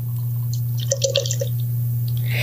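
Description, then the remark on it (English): A short burst of beet beer glugging and splashing into a glass as it is poured, lasting about half a second, set against a steady low electrical hum with no one talking. “Actually, pouring it out, it's not as red as I thought it was going to be.”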